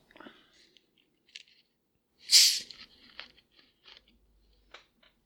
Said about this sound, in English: So, anyway, bear with me here. Just gonna get a sip off of my Coke.